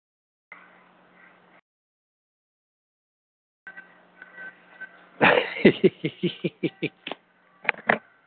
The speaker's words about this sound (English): Hold on a second. My son's alarm went off.